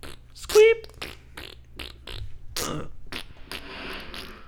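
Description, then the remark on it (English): A rapid string of sputtering, raspy fart noises, seemingly blown by mouth, with a loud squeaky burst near the start followed by choppier, breathier blasts. “Farts.”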